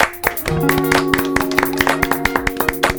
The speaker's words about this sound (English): It's been a pleasure. Big applause.